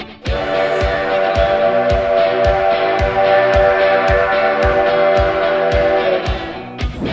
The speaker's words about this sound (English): And oftentimes it doesn't translate too well, but here we are, on the train. It's a classic steam train, in case you couldn't tell the sound.